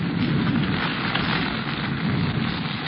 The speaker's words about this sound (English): Is that rain? I thought somebody was holding a fire hose over my head. Jungle rain come fast. Rain very hard, then go fast.